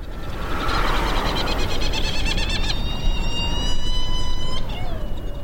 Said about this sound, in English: Yeah, here we are on Round Island, not far from the island of Mauritius in the Indian Ocean. These are flying all around us, are these amazing gadfly petrels called Herald petrel or Trindade petrels.